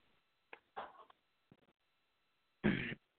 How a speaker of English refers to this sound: Let me clear my throat.